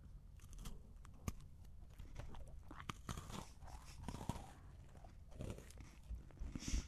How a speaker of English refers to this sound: No, granted, I don't need to taste this. I already know how delectable it is. I'm going to attack it with no alterations. So we're talking the two butter cookie. Sorry, I can't hear you over a crunch.